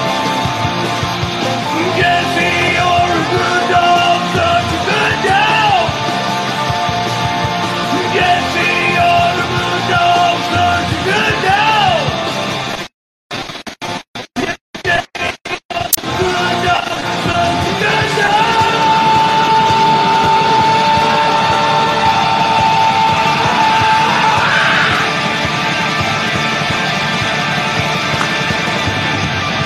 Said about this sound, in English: Fuck it, I fucked it up, so I'm just going to scream.